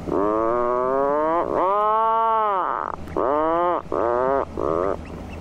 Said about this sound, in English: That sounds a bit like a chainsaw, but it's actually the sound of puffins, that seabird famed for its massive, colourful beak and somewhat odd clown-like appearance. They're very vocal birds, as you could hear there.